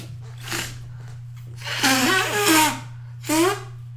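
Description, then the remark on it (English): Someone blows their nose: a soft puff, then a long, wet honking blow with a wavering pitch, followed by one shorter honk, all over a steady low electrical hum. “But oh god damn, I gotta blow my nose again.”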